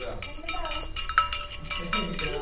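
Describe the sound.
A bell rings repeatedly in quick, uneven strokes, each one bright and clanging, with a voice murmuring underneath.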